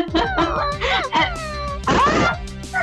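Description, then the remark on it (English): A person vocally imitates a hellhound hit by a crossbow bolt as a sad, confused dog, like a confused Scooby-Doo: a wobbling, whining series of rising and falling yelps and groans, fairly loud and continuous for about three seconds. “It goes right as like a confused Scooby-Doo.”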